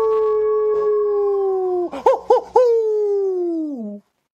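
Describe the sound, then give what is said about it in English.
A red wolf howl sound effect: a single long howl, steady and fairly loud, broken midway by a few quick yipping warbles before it slides slightly lower and cuts off abruptly. No one speaks. “Give me the Red Wolves in the first quarter, Ken.”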